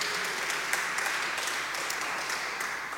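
An audience applauds a quiz contestant steadily for the full three seconds, a dense wash of many hands clapping at once, with sharper individual claps flickering through the steady roar.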